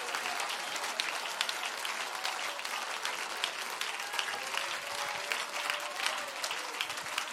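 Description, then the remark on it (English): An audience applauds steadily to praise and thank God, dense overlapping claps forming a continuous, even wash of sound that holds at a constant level for several seconds, with a few faint voices mixed in. “Why don't you applaud him and thank him?”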